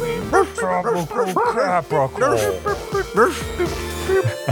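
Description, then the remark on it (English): People imitate dog barks with their voices, a rapid run of loud yaps and woofs that overlap and tumble over one another for several seconds. “I thought we were all going to be barking.”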